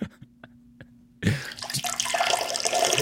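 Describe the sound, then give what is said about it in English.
A peeing sound effect: a few soft drips give way to a sudden, steady splashing stream of liquid that stays loud and hissy until the end, with no voices. “That was the peeing one, but I wanted to go with the farting one.”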